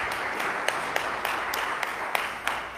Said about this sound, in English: I think that deserves an applause, a round of applause.